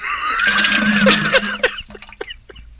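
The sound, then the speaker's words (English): A loud, squealing, hissy burst gives way to water fizzling, with scattered small crackles and pops thinning out over the last second. No one speaks. “Oh, you hear the water fizzle at the end.”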